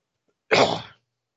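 One sharp cough in a home studio erupts abruptly and fades within half a second, with silence before and after and no talking.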